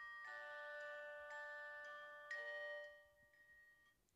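Gentle, music-box-like nursery chimes open a song, ringing out a slow melody, each struck note sustaining and overlapping the next, fairly quiet and with no voices, fading a little toward the end.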